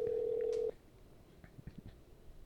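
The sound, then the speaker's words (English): A phone call goes through: a loud, steady electronic ringing tone sounds once for under a second, then cuts off, leaving quiet line noise with faint clicks. “Let's call one more time.”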